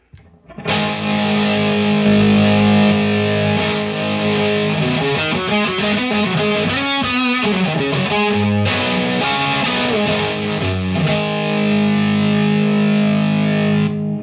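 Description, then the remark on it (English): A loud electric guitar played through an overdrive combined with a boost effect set around 6 decibels plays sustained chords and a run of quick notes, its saturated, boosted tone thick and buzzing with no voices present. “And you can have that in combination with the overdrive.”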